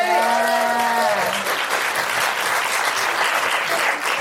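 An audience breaks into dense, loud, steady clapping that fills the whole stretch, with a sustained vocal whoop or cheer rising over it at the start before fading into the applause. The applause is for a woman who runs a charity and trust as she comes to the mic.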